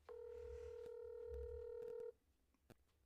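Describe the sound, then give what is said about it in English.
A steady electronic telephone ringing tone from a call to a Virginia number hums for about two seconds, then cuts off abruptly, leaving faint background noise and a single soft click; the call goes unanswered. No one speaks. “I'm going to edit all this ringing out and everything, but.”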